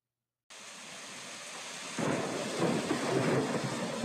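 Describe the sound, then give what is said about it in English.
Steady rain hisses, then a deep, heavy roll of thunder swells in partway through and keeps rumbling beneath the downpour; a loud storm with no voices. “One day, during a terrible storm, three old witches were talking.”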